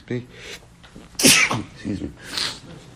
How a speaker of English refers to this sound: Now I'm going to start sneezing.